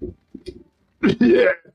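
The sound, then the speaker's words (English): A voice imitates a character coughing: a few soft throaty sounds, then one loud, harsh, sputtering cough-and-spit burst, lasting about half a second. “As he coughs and spits, but comes back to life.”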